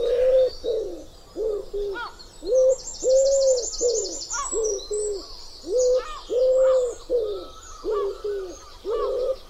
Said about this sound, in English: Wood pigeon. And they're not made out of wood. They live in woods. And they go coo, coo, coo, coo, coo. And that's very distinctive. Five separate coos. Coo, coo, coo, coo, coo.